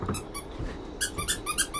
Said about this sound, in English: Don't squeak when we're doing our reading, please.